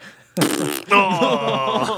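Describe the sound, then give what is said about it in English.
A loud fart noise, apparently made with the mouth, erupts after a brief quiet moment, then stretches into a long buzzing, voiced drone that holds until the end. “Oh, you always sort of poop and fart on yourself when I'm trying to show you how much I love you.”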